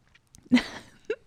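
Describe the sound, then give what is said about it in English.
A single noisy slurping sip of coffee lasting a fraction of a second, followed by a short throaty swallow sound. “Fearless sip.”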